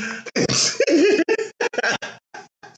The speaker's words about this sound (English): Cough.